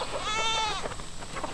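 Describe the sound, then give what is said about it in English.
A goat lets out a loud, wavering bleat, followed by fainter bleats from other goats of a herd in the background of an open outdoor pasture on farmland in southern Georgia, USA. “We met him a while back as he stood at his pasture gate watching over a herd of goats.”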